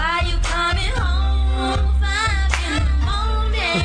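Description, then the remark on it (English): Steady rhythmic soul-clap hand claps punctuate a soulful music track, landing roughly every half second, loud and upfront, blended with the instruments and sustained vocal-like tones. “There you go, the soul clap.”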